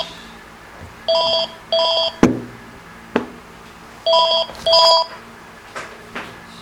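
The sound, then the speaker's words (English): An electronic telephone, one of about twenty phones present, ringing in two double bursts, each pair of short chirping tones followed by a pause. Sharp clicks and knocks sound between the rings, with no talking. “Now some phone is ringing.”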